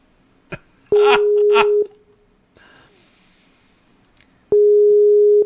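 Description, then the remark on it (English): An outgoing phone call rings out twice with a steady electronic ringback tone, separated by a long pause, and goes unanswered. A cough and a bit of vocal noise overlap the first ring. “Of course, now he won't pick the phone.”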